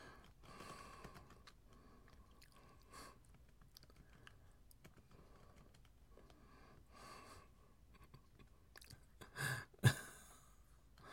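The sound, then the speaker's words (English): Steady, irregular clatter of someone typing on a computer keyboard during a live stream, soft, with a couple of sharper, louder key strikes near the end. No one speaks. “Guys, I can't type and talk at the same time, so I just... tell you guys what I'm typing.”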